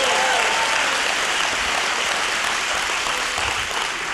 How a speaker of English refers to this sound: Come on, church. Oh, come on, if you're gonna clap, let's clap well. Come on.